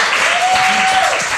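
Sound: audience applause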